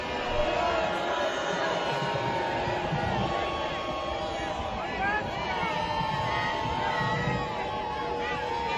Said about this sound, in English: They're getting booed too. Love it.